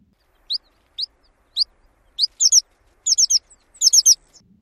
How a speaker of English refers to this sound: Now we're going to compare Horned Lark to the American Pipit. First is the Horned Lark, then the American Pipit.